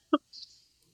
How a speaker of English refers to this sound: And so the sound you're hearing is me pouring a glass of Diet Pepsi.